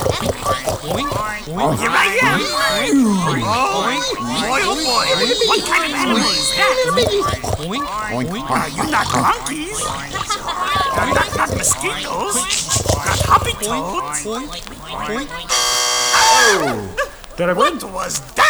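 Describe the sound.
At Expo West, several people crawl on the floor and loudly imitate pigs in a game set up for B&E's Party Time Vegan Pork Rinds: overlapping oinks, grunts and squeals in a continuous chaotic jumble, with a brief harsh buzzer burst near the end signaling time is up.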